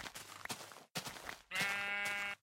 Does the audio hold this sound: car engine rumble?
no